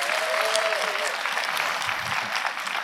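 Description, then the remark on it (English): A church audience at an early Sunday morning gathering applauds its senior pastors steadily, a dense wash of many hands clapping at even loudness throughout, with a faint whistle-like tone early on and a brief low thump near the end. “I would love for us to give a round of applause in this room for our senior pastors.”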